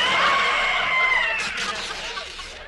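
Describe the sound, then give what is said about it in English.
A loud, high-pitched scream rings out in the frozen foods department of a store, a sustained wavering shriek that slowly fades over a couple of seconds. “That high-pitched scream didn't fool me, for underneath the dress was Baby Giles Grosbeck, notorious food heister.”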